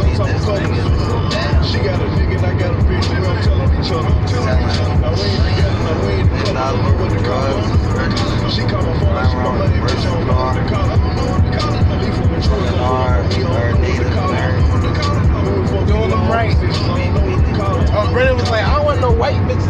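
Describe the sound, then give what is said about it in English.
A steady, low road rumble fills the inside of a moving car for the whole stretch, with people talking over the constant drone, on a journey to Oklahoma. “I'm in the car.”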